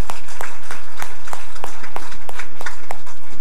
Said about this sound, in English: Lakeshore Middle School football team is in the house with us today. Everybody give them a welcoming applause.